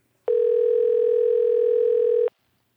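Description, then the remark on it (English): A single steady telephone ringing tone sounds for about two seconds, loud, with a flat electronic hum that starts and stops abruptly, as an outgoing phone call is being placed. No voices are heard. “Oh, it's ringing. It's ringing again.”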